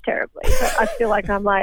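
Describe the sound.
A single sharp sneeze bursts out mid-sentence, loud, while a person keeps talking on either side of it.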